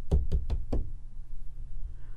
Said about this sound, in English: Oh my god, could somebody have been knocking from inside the wall? No, I don't think there was anything knocking inside the wall.